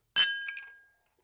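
Glasses clink together once in a toast, a bright close chime that rings and fades over about a second, followed by a couple of faint ticks. No one speaks.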